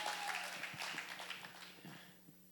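An audience applauds, a dense, steady patter of many hands clapping together that gradually thins and fades over a couple of seconds.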